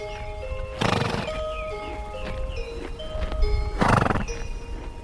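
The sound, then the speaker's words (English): A horse neighs and snorts in two loud bursts, about three seconds apart, with a steady murmur of hooves and stable noise underneath; no one speaks. “Horses have this sour, sweet, acrid smell, very warm smell.”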